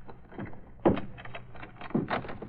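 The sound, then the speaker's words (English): A closet door is unlocked and pulled open: a sharp thunk of the latch, then a creaking swing and a second knock as it settles, with faint rustling and low room noise around it. “It's coming from that closet. That it is. Unlock the door.”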